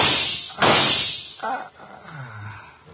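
Two sharp gunshot cracks fired from a window, about a second apart, the first loud with a swishing tail and the second shorter and softer, followed by a low fading whine.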